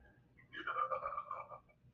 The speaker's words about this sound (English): Is that you? Yeah. That sounded like a fucking monster. Like growling under a fucking like drain. That was a burp.